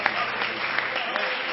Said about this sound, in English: Let's all clap our hands and shout unto the Lord with the voice of triumph.